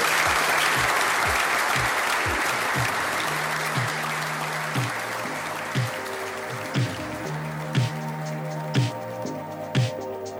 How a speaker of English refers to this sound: Right, should we just thank these guys with a firm round of applause?